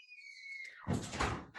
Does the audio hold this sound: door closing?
yes